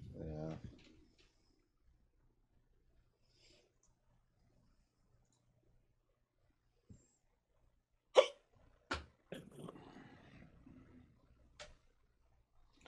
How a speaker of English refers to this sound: No, I just got the hiccups.